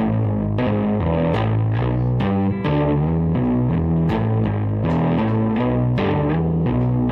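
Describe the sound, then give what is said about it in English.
An electric guitar run through effects, its sustained, slightly distorted chords taking on a smooth keyboard-like tone. The chords change in a steady rhythm at a constant, fairly loud level, with no voices. “And when I do this stuff, it makes it sound like a keyboard.”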